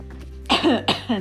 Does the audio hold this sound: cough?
yes